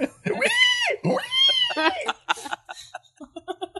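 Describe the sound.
A person's voice imitates animal noises: two long, drawn-out meow-like wails, then a quick run of shorter, choppy vocal squeaks and grunts.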